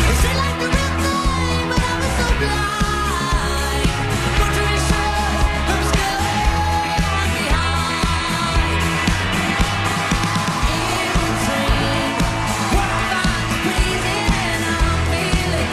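A female singer performs a cover song over a full, steady band arrangement with bass, drums and layered melody, playing continuously and fairly loud for about sixteen seconds.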